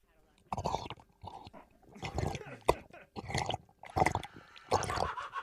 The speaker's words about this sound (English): I'd really like to drink some water. Okay, have a drink of water, and then...